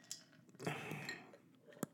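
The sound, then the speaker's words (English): Ice cubes clink in a glass as someone takes a quick sip, a soft slurping rush in the middle framed by a few sharp, scattered clicks. “As I sip on my ice cubes.”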